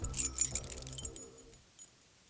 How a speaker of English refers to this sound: He refused to stop there and was thankful he didn't lose his keys in the forest as he desperately tried to unlock his door.